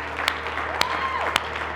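A church audience at Renew Church gives a hand clap of praise to Jesus at a Christmas service, a dense, steady wash of applause with a few sharper individual claps popping out above the crowd. A faint tonal hum lingers underneath.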